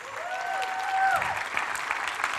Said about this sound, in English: you do me a favor and stand to your feet and give him a warm welcome here at Rethink Life. All right. Oh, come on. Keep clapping.